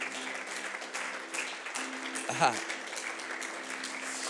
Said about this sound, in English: Are you just thankful for the Lord? Why don't we just give him a hand clap of praise?